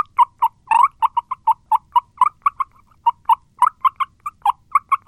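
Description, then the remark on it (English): A mouth call imitates turkey yelps: a long series of short, light, mid-pitched notes in quick, slightly uneven rhythm, with a couple of harsher, louder bursts and no talking. “Otherwise, with the mouth call. Really light yelps.”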